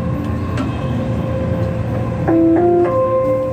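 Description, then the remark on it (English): A Dubai metro train heading south rumbles steadily along the track, with a constant low roar, faint rhythmic clicks, and a rising whine of the motor toward the end. No one speaks. “Right now on the metro, heading south, all the way south.”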